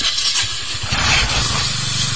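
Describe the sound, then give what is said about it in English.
A motorcycle engine runs with a steady, rough mid-pitched rumble and a broad hiss over it, fairly loud, as the rider drives away. There is no talking. “So he's all pissed off after he drove away, is what you're saying?”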